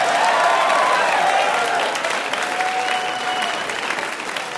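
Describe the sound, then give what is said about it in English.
A game show audience applauds steadily with dense, continuous clapping for the answer St. Elsewhere, while cheering voices and a few high whoops rise above it throughout, loud and sustained for several seconds. “They were really cheering for St. Elsewhere.”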